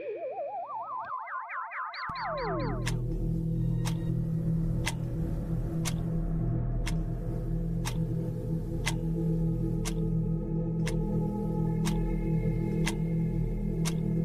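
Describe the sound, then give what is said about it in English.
Rising electronic sweeps give way to a steady, evenly spaced clock ticking, counting down the Doomsday Clock, roughly one tick every two-thirds of a second, over a low, dark sustained drone with no voices. “That ominous ticking can only mean one thing.”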